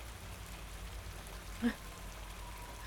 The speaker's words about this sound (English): And the rain, it just vaporized. It was falling, but it couldn't touch me.